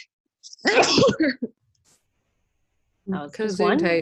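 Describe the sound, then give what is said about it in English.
A single loud sneeze with a sharp breathy burst, then a short silence before someone starts talking. “I'm going to sneeze.”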